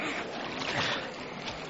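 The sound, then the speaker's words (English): Water pours and splashes in a steady, broad rushing wash, loud and continuous, as jars of water are emptied over wood and a sacrifice, with no voices. “See how they cover the wood and the sacrifice with water.”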